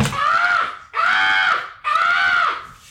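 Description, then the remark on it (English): A voice imitates a woman screaming when the lights go off in the dark: three loud, shrill, sustained wails of nearly a second each, separated by short gaps, alone with no talking. “It was this woman just screaming at the, she screamed at the lights going off.”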